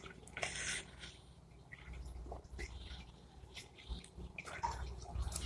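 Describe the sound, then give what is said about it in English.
A small crow fountain trickles steadily and quietly, with soft drips and splashes continuing throughout and no one speaking. “You hear the crow fountain going? I've got the crow fountain going now.”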